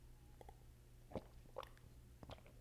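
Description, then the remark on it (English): Someone takes a sip of water: three soft, wet gulping and mouth sounds spaced about half a second apart over a low background hum, with no talking. “Hold on, I'm going to take a sip of water.”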